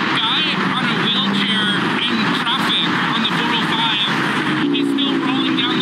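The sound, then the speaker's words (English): Loud, dense traffic on one of the country's busiest freeways roars continuously at night as cars zoom past a man slowly wheeling a non-motorized wheelchair down the freeway, with indistinct voices mixed into the steady wash of engine and road noise. “Here's a little bit of audio from the video when the man is slowly wheeling down the freeway as cars are zooming by.”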